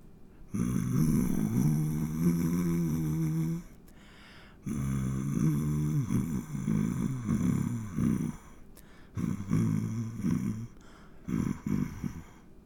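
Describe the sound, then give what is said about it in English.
Someone hums the hymn 'The Lord Is My Shepherd' in a low, gravelly voice that sounds almost like growling, the melody coming in several phrases broken by short pauses, with no words spoken. “It sounds funny when you hum. It sounds more like you're just growling.”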